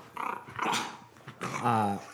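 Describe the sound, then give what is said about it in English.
An agitated dog growls in two bursts, the second more drawn out and tonal, almost whining. No one speaks. “This dog? Yeah, he was going crazy.”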